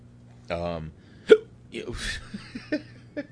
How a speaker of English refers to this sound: I got the hiccups, excuse me.